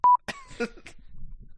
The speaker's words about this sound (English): One beep means yes. Two beeps mean no.